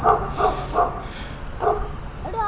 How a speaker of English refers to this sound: That dog is not in the house being sold.